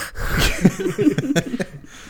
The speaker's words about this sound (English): Starts breathing heavily.